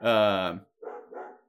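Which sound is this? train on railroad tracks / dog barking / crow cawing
dog barking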